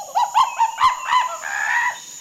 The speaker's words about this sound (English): I'm in a place with big trees. There are plants everywhere, and vines are hanging down from the trees. It's really hot and sticky here. I can hear birds all around me, and I think there's a monkey up there, too.